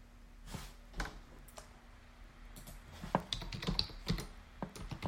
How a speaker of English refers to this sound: And of course, my coworker is IMing me. And here I am typing in some stuff.